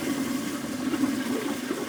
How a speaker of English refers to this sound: You know, the bathrooms here, I mean, even like on the yard and out here, outside of work. The refreshing sounds of a toilet flushing in prison.